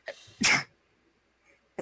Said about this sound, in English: Sorry. Bless you.